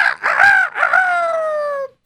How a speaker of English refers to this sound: And sure enough, he waited for the next day. The rooster crowed.